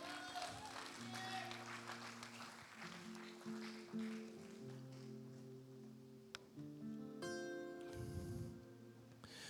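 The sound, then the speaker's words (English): A standing audience gives the Lord a hand clap of praise, clapping steadily for several seconds in a dense crackling wash of hands over sustained keyboard chords, with scattered shouts and voices rising in the crowd. “So as you stand to your feet, give the Lord a hand clap of praise.”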